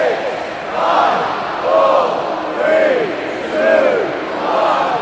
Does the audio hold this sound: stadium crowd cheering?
yes